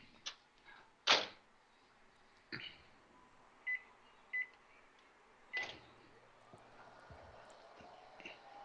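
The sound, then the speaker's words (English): A couple of clunks and a clatter, then a microwave gives two short, high-pitched beeps, followed by another thud as a faint third beep sounds. No one talks. “Then we'll drop this into this here microwave unit.”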